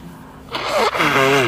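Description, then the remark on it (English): A person blows their nose because of allergies in two forceful, breathy bursts with a slight honking tone, loud after a brief quiet moment. No one speaks. “God, blow my nose, allergies.”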